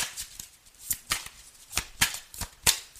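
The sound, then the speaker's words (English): Tarot cards being shuffled: a series of about seven crisp, papery snaps and flutters at an uneven rhythm over a soft rustling bed, with no voices. “May I have some cards, please?”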